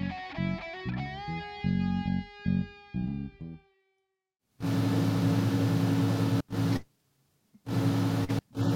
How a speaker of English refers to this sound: You turned your air conditioner back on, huh